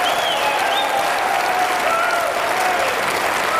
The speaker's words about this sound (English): Nothing better than a politician getting applause. I love it, Nothing.